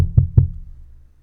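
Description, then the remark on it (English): Two quick, heavy knocks land about a fifth of a second apart, each a deep thud with a sharp attack, followed by a low, fading rumble. No voices. “So that's like a vigorous rap at the door.”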